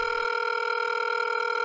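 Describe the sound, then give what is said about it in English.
A steady electronic ringing tone of an outgoing phone call to Kathy Lee Gifford, one continuous buzzing ring that holds at an even level with no voices over it. “Thanks for answering the phone”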